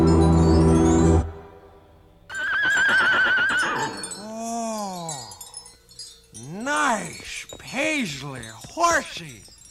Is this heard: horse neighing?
yes